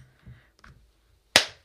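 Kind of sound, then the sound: human body sound, single hand clap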